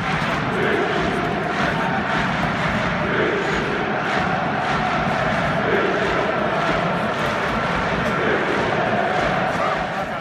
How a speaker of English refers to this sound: Because Grimsby is a big fishing town, big oyster town, and the fans actually have a chant. Fish, clap, clap, clap, fish. And if you don't believe me, here it is.